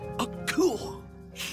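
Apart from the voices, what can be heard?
sneeze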